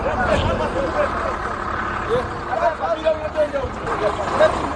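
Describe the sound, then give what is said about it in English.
Busy ambience at the Malawi bus terminals on Kirk Street in Johannesburg, South Africa, at Christmas time, as hundreds of travellers catch the last buses to Lilongwe: a steady wash of crowd chatter and overlapping voices, vehicle engines rumbling, occasional louder calls rising above the din. “is at the Malawi bus terminals along Kirk Street in Johannesburg with four large bags”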